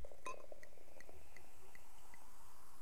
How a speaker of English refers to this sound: Let's clink our glasses.